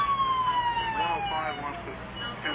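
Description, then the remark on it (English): Sirens of a hastily summoned trio of police squad cars wail steadily at moderate loudness as they race to the scene, their tones sliding slightly downward as if the cars are speeding past, with a faint rumble of traffic underneath. “Meanwhile, learning of the Melter's capture of Tony Stark, a hastily summoned trio of squad cars races to the scene.”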